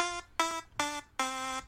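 A timer alarm goes off with four loud, buzzy electronic beeps in a steady rhythm, each lasting a fraction of a second, clear with no talking.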